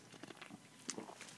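Soft mouth sounds of someone taking a sip of mango beer, with small wet clicks and a brief slurp partway through, quiet and without any talking.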